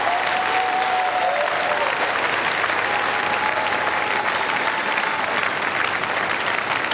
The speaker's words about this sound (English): Amen. I believe you are clapping for Jesus Christ. Put your hands together beautifully for our Lord and Savior Jesus Christ.